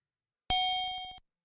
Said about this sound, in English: Oh, God, just ring the bell.